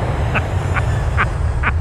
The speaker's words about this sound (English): Well, that's the wrong sounder. I think, if that's it, there's the jet.